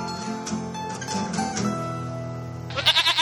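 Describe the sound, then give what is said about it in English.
Two goats bleat in a sustained, wavering cry, overlapping, then one breaks into a loud, rapidly quavering bleat at the end. No one speaks. “It's two goats.”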